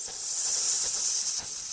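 A steady, sharp hiss like a snake's, loud, holding for a couple of seconds with a slight dip near the end. No one speaks.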